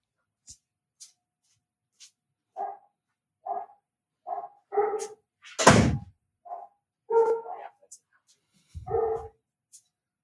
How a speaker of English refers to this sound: can you hear those dogs barking in the background? Are they ruining just it? A little bit?